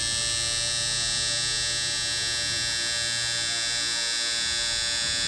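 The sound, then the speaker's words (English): A long, unbroken electric buzz drones steadily for about five seconds, harsh and bright with dense overtones, holding one pitch without pause and with no voices over it. “That was a long, long buzzer there.”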